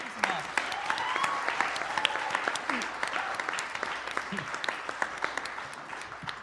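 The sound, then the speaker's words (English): An audience applauds steadily in thanks to the people who helped, dense overlapping claps forming a continuous patter with sharper individual claps popping out, plus scattered cheers and voices mixed in throughout. “Let's awesome. Give some applause.”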